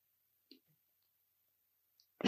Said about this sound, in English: Another water break. Sorry for the cough as well, right?